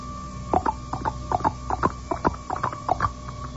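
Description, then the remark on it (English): Quick taps fall in uneven pairs, a galloping clip-clop rhythm imitating horse hooves on a hard surface, repeated steadily for a few seconds, fairly crisp over a faint steady hum. “How about like this? Like a horse?”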